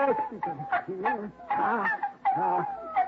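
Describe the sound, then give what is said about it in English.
Six newborn puppies mew and squeak in a steady run of thin, high-pitched cries, several overlapping one another, fairly loud, with no talking. “What's that mewing sound, Al?”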